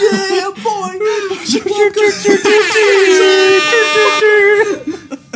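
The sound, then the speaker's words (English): A voice imitates blaring air horns with loud, brassy sustained blasts, wavering at first, then a long steady honk, repeated in quick succession. “we should do one where it's just like air horns.”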